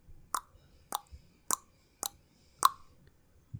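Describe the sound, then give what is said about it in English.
Five sharp tongue clicks mimic the ticking of the trade deadline clock, spaced at a steady, slightly uneven beat with brief silence between each pop; the fifth click is the loudest, and no one speaks. “That's my tongue. It's trying to imitate the trade deadline clock, because it is ticking.”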